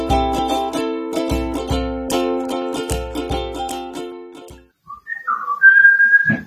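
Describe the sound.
Music with steady drum beats plays and fades, followed by a short pause and then a person whistling a brief, clear rising tune.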